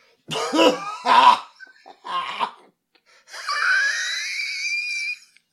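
Two harsh coughs and a smaller third one, then a long, drawn-out wheezing breath with a thin, high whistling tone that holds steady for about two seconds, coming from a person's lungs irritated by a tree and grass pollen allergy. No one speaks.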